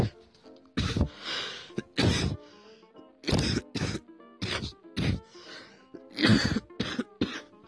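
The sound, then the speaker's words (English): A person coughs in a string of harsh bursts, about eight in all, with throat clearing between them. The fit is irregular and fairly loud, and no one speaks. “Sorry, coughs.”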